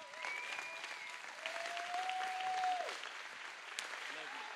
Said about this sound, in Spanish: Vamos, dale más fuerte el aplauso al que realmente se lo merece, al Rey de Reyes, al Señor de Señores, al que salvó tu vida, al que restauró tu vida. Vamos, acompaña ese aplauso con un grito, con un aleluya, con un gloria a Dios.